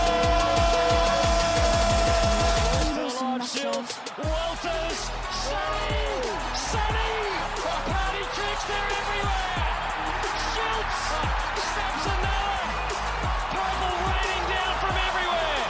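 A loud, brash sting introducing the week's big game segment: a sustained musical chord for about three seconds, then a dense, busy burst of swooping tones and crowd-like noise that carries on to the end.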